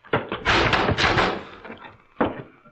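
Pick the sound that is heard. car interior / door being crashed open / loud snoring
door being crashed open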